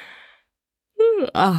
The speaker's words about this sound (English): Big yawn.